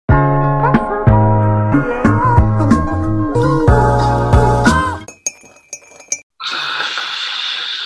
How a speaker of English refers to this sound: That's an authentic kettle sound effect.